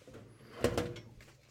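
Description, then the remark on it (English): A wooden chest of drawers slides open or shut with two quick scraping knocks close together, over a faint background hum. “I'm going to put it in this very fancy chest of drawers.”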